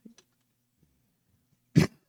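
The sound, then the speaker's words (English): A single sharp, loud cough bursts out near the end after almost two seconds of near silence, preceded only by a couple of faint, brief noises. “Cough it.”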